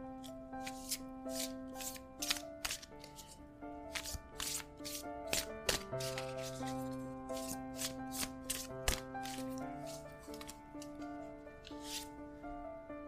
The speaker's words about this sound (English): So I'm going to go ahead and shuffle, and we will pull a card and see what we get.